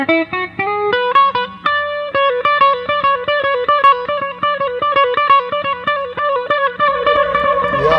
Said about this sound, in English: And I love the way those ramp up. It's not like an immediate fast, I know, immediate slow. I know. It's like you can kind of see that Leslie going up to speed.